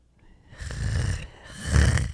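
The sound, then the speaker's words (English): Two loud snores in a row, each a rough, rumbling drawn breath lasting about half a second, with a short gap between them and no talking. “Were you snoring or were you just like, what was going on there?”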